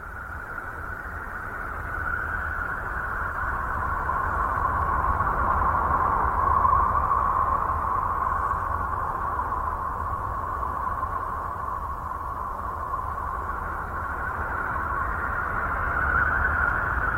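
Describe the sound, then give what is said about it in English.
A space probe recording from a Uranus flyby: an eerie, steady whistling drone layered over a dense rushing hiss, holding at an even volume for the whole stretch with no voices. “So like we just heard with Saturn, this is a sound clip of a space probe that is passing by Uranus.”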